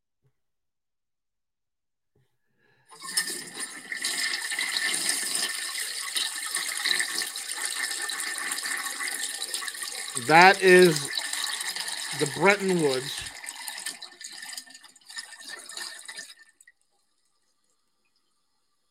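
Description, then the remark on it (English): A toilet flushes with a steady, loud rush of water that swirls on for about thirteen seconds before cutting off, while a voice briefly speaks over it partway through. “That is the sound of the dollar standard, the petrodollar, and Bretton Woods too, being flushed down the toilet.”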